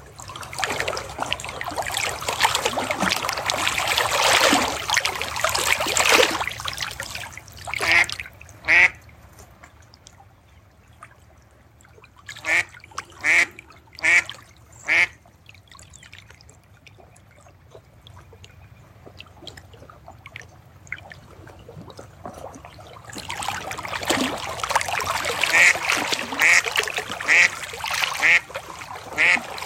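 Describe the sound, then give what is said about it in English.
A duck quacks in a quick series of short, raspy calls, with trickling, splashing water filling the moments before and after. No one speaks. “Duck says, yep, yep.”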